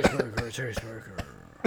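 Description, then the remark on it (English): Several short, sharp coughs break out at uneven intervals, fairly loud, with a voiced, throaty murmur running between them. “We're just all coughed throughout.”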